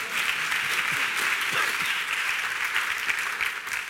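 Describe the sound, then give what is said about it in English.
An audience claps for Jesus during a sermon, a dense, continuous wash of many hands lasting the whole stretch, fairly loud and even, with faint voices mixed underneath. “If I were you, I'd be clapping for Jesus.”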